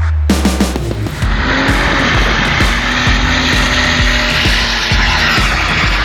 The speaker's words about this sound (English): Those car sounds were sent in from Landon. That was his Jaguar